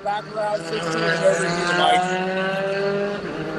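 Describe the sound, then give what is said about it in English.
The race leader's car, driven by Ogborn, drones loudly and steadily as it speeds by on the track through 19, its high harmonic whine holding throughout, with a voice talking over it. “All right, so as let's see, there goes our race leader now, Ogborn, through 19.”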